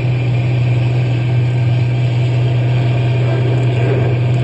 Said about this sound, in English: I'll give it a little more gas. Faster. I'm going as fast as the truck will go. We'll go faster anyway.